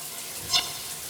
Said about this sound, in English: I turned on my shower in the morning and I stuck my arm under the water.